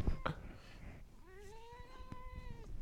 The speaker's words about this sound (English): All you can hear is the sound effects coming from her. Here, give me her. Give me the cat.